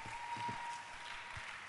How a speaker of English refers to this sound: Let's clap our hands for our sister